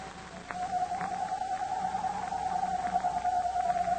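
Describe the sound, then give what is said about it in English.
In a Captain Midnight radio drama scene, a voice imitates a hoot owl's screech: one long, steady, wavering high-pitched cry held for several seconds over a constant background hiss, with no talking. “imitating the screech of a hoot owl.”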